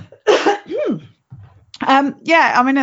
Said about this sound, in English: Oh, excuse me, I'm going to have to cough.